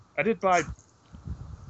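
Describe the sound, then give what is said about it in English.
A single loud sneeze with a voiced two-part 'ah-choo' burst, followed by a moment of faint low rustling. “Bless you.”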